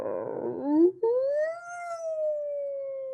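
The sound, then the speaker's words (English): A hermit woman lets out a long, drawn-out howl to scare someone after a brief rough vocal burst, the voice gliding upward then holding a steady, slowly sinking wail. “making it sound like her voice is coming from one direction, but sneaking around, and scares him from another by howling.”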